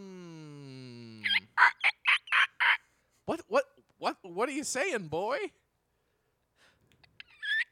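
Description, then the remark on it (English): A cart's wheels squeak loudly, starting with a long rising whine and then a quick run of sharp, rhythmic squeals, followed by a person speaking over a few faint squeaks. “I'm going to run over here, and I'm going to oil up this cart.”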